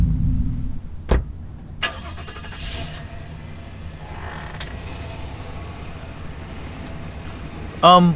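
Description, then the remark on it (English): An old Datsun car's engine cranks and catches with a sharp mechanical click and creak, then settles into a low steady rumble as the car idles and pulls away, ending with a brief squeal. “You don't know anyone who drives an old... What was that, a Datsun?”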